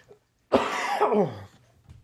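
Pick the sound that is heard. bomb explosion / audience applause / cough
cough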